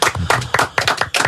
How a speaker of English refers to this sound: I love that. I want to clap for that.